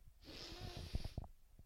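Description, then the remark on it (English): A wet nasal sniffle drawn in with a hissy airflow, followed by a few short, guttural snorting bursts, fairly loud, with no talking. “There it is. A good sniffle, a good snort.”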